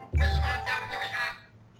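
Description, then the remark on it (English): A phone alarm goes off, playing the Underpants Gnomes tune from South Park: a short burst of tuneful, harmonic sound with a heavy low thump at the start, steady for about a second before fading away. “Yeah, I have the underpants gnomes as my alarm.”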